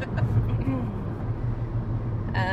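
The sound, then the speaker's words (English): A female car navigation voice speaks briefly over the steady low rumble of a moving car's interior on the 110 freeway in Los Angeles at 10 o'clock at night in heavy traffic, with a short prompt near the start and another cutting in at the end. “I was saying something important, GPS. Yeah, I know. You interrupted me.”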